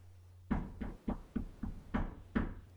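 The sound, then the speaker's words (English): About seven knocks on the door of a room in a house, made by a nephew during an interview, in a steady, slightly uneven rhythm, fairly loud, with a faint low hum in the background and no one speaking. “He was knocking on the door of the room that I was in for the length of that conversation.”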